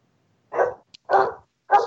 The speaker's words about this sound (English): Yeah, sorry. The dog's going crazy.